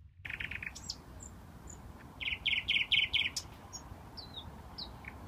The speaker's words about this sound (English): let's go ahead and take a listen to the bird that Karin ran into last evening